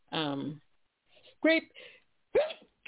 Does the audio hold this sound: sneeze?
yes